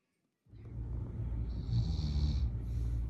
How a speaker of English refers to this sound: One of my favorite things to do is to every now and then be sent some funny videos. This is a season when I get sent some funny videos of some snoring.